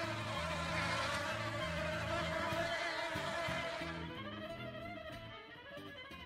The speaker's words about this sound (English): Here comes that busy bee.